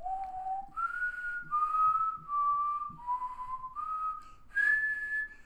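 A person whistles the melody of a Disney song, a clear pure tone stepping through sustained notes in a slow, smooth phrase that rises to a higher final note, with no talking.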